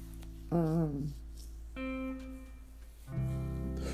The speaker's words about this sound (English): Excuse me. I needed that. Because I was like, man, I need a burp or some shit.